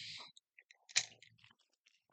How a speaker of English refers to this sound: If you see somebody, sorry, chewing on ice.